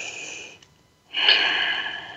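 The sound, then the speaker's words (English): A deep breath drawn in with an airy, hissing rush after a short pause that follows a softer breath, by a person with both hands on their heart. No one speaks. “I'm breathing that in, both hands on my heart.”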